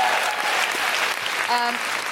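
A crowd applauds steadily, dense overlapping clapping filling the whole stretch at an even loudness, with a short pitched musical tone briefly rising above it near the end.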